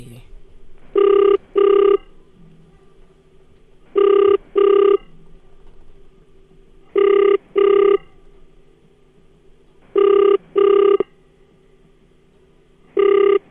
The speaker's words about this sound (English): All right. Here we go. All right, it's ringing. Please stay. All right. Let's go.